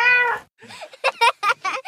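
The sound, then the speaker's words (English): A cat meows: one drawn-out meow, then a quick series of shorter, chirpy meows in rapid succession, loud and clear with no talking. “And then my cat was curious, and she fell inside the hole.”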